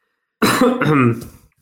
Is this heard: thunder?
no